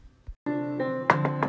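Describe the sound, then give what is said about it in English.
Three sharp knocks on a door, evenly spaced, ring out over a steady sustained musical tone, preceded by a couple of faint, dull taps. “Who's that out there knocking?”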